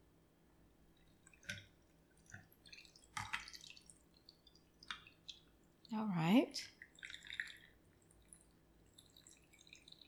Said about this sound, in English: There's no ice in here, right? We're gonna pour it over ice. You wanna shake it up really good. I think that's good enough. And then strain into your glass.